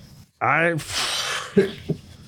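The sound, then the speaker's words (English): A single loud sneeze: a brief voiced, rising intake followed by a sharp, breathy burst of noise, then a couple of faint thumps and sniffs as it settles. “Bless you. You sneezing?”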